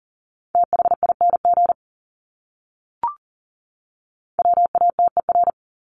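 Rapid Morse code at 40 words per minute sending common English words: a steady mid-pitched beep keyed in quick dots and dashes, sent as two short bursts separated by a pause with a brief click between them.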